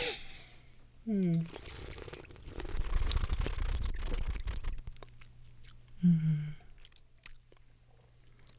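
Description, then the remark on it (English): Someone takes a long, airy, slurping sip of Pinot Noir (Spätburgunder) that lasts several seconds, tasting the wine. Short murmured hums come just before and after it. “And I'm finally going to take a sip. Let's Are we ready? Let's taste this Pinot Noir.”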